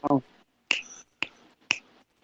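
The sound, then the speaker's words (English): A short burst of voice, then three crisp finger snaps spaced about half a second apart, each a sharp, bright crack with a quick fade. “When I snap my fingers, you'll I'll be...”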